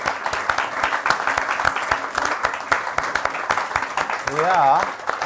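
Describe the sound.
An audience at a London Review Bookshop event applauds with dense, steady clapping for about five seconds as a man from the audience is called to the front, and a voice briefly calls out over the clapping near the end.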